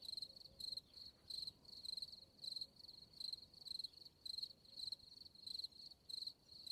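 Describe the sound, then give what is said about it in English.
Crickets chirp in a steady, rapid rhythm, short bright trills repeating roughly twice a second over a faint background hiss, with no voices present. “I'll add crickets here too.”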